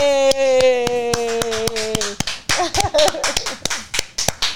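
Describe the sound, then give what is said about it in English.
A small group claps someone out in a brisk, steady rhythm of sharp, crisp claps. A long, falling cheer rings out over the first half, then voices chatter beneath the continuing applause. “All right, we can clap you out.”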